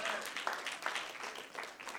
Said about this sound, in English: Come on at the back. You can clap as well. Give us some from the back too,